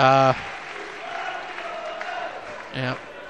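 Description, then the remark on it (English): Steady applause from the Gateshead crowd as an injured Gateshead player comes off, a dense patter of many hands clapping at moderate loudness, with brief bursts of a man's voice at the start and again near the end. “And, he always served Gateshead very well, and he's getting a good warm round of applause here from the Gateshead faithful.”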